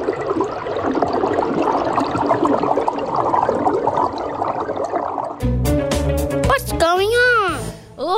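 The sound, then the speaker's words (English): Steady, dense underwater bubbling and gurgling as swimmers head back up from the deep sea to the surface fills the first five seconds, fairly loud, then cuts off abruptly into bright, swooping tonal sounds that rise and fall. “Now come on guys, let's swim back up to the surface.”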